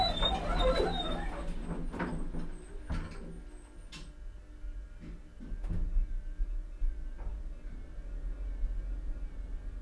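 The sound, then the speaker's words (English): Lift doors slide shut with a series of sharp clicks and rattles over a steady low mechanical hum, then the hum carries on quietly with a few faint knocks. “Mind the doors. Doors closing.”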